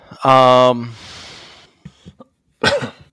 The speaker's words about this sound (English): Oh, I unmuted just to cough.